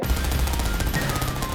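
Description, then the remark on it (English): Rapid bursts of machine gun fire rattle off in a steady, fast rhythm, each sharp crack running together into a continuous loud stutter with no voices over it. “You pull your gun out and just... You begin mowing down these Union scum that are running away.”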